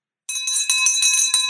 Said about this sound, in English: Well, let me first of all give you a victory bell